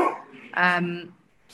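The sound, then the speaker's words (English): A single bark from a female pet dog rings out, a short harmonic yelp lasting about half a second, preceded by a brief burst of other sound and followed by quiet. “And your dog agrees.”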